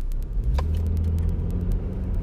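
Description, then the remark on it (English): A steady, loud low rumble of road traffic as vehicles roll past, with a light scatter of faint ticking clicks over the top. No one speaks. “Man, what is with this traffic today?”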